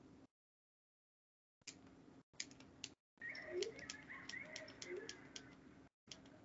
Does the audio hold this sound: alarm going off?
no